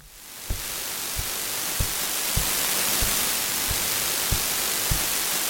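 A steady wash of loud radio static from an old-style radio swells up quickly and fills a basement room, with faint low thumps ticking through it at a regular pace. No voices are present.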